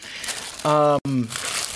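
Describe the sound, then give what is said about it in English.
Steady crinkling of a plastic bag and tissue paper being handled, the packaging holding extra weapons for a Snake Eyes action figure, with a short voiced murmur breaking in partway through. “They come separately in a plastic bag. In a paper tissue.”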